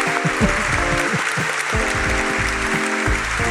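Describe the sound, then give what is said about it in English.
A steady, loud wash of applause lasting a few seconds, with voices cheering and whooping on top and no break in the clapping. “Can I get some applause or something?”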